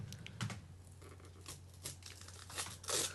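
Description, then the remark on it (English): Holiday-themed Christmas tree gift wrapping paper being torn and crinkled as a red box is slowly opened, in a string of short rips and rustles that build to a louder tear at the end, with a steady low hum underneath. “is opening a red box. To the people at home, it is a red box. She's doing it very slowly. The paper is holiday themed.”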